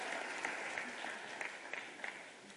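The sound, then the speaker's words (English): Steady applause from a church choir during worship, a dense wash of overlapping hand claps with a few sharper individual claps popping out, with no voices. “let's get a choir hand clap.”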